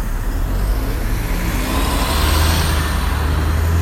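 Steady roar of two lanes of road traffic streaming past, with a deep engine rumble swelling midway as a heavy vehicle goes by; no voices.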